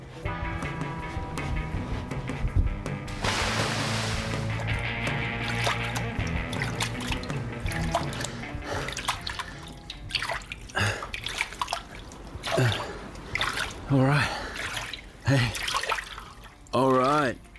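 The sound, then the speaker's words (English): Water splashes and sloshes steadily as a surfer wades into the ocean at Moffat's, Queensland, on a sunny day with offshore wind and 4 to 5 foot waves. A louder surge of splashing comes early on, and a voice speaks over the churning water toward the end. “Just hitting the water now.”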